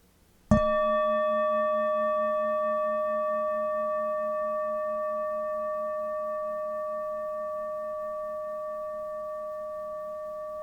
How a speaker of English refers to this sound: When I go to the temple, I ring the bell. When I hear the bell in the meditation, it's an invitation to visit my inner temple.